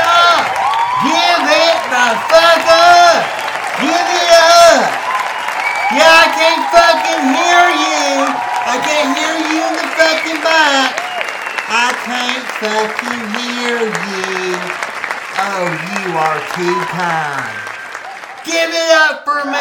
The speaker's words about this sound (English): Your applause. And I'm sure the Lord does too, but let's take the time to cheer on my ass instead. Thank you.